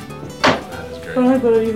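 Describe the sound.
A door shuts with a single solid thump, fairly close, followed by a brief stretch of someone speaking in the background.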